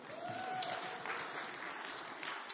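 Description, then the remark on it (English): A crowd applauds steadily, a dense, continuous patter of many hands clapping at an even level, with a faint whistle-like tone rising briefly near the start. “It's okay to clap. They're doing a good job.”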